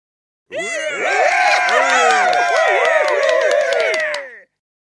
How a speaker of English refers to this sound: That raucous applause means two things. One, I can't find the jazz drop that I used last week. And two, it is time for everybody's favorite part of the show, the end.